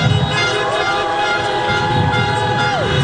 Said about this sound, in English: honk your horn if you want to have civility again